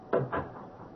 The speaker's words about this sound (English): Close your room door while I close mine